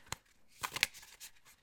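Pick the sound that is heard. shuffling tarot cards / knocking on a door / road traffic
shuffling tarot cards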